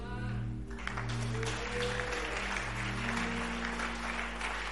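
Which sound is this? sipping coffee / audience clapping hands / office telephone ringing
audience clapping hands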